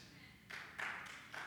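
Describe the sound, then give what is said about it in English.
An audience starts clapping, the applause swelling in a few uneven surges of crisp, bright noise over a low background murmur. “You can clap, that's good.”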